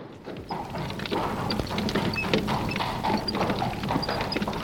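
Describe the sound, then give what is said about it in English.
Horse hooves clip-clop in a quick, steady rhythm over a dense, rumbling wash, like Hades' chariot drawn by four black horses being pulled along at speed, loud throughout with no voices. “Hades had a magnificent chariot drawn by four black horses.”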